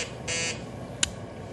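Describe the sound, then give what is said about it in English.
A short, harsh electronic buzzer tone of an emergency signal on the state radio sounds for about a quarter second, followed by a brief sharp click, over a low background hum. No one speaks. “Hey, emergency signal on the state radio.”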